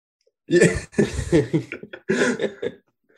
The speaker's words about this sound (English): Oh, I'll be yawning right now.